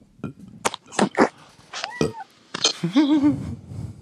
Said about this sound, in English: Look at that cat. Oh, hi, kitty. That's a good cat.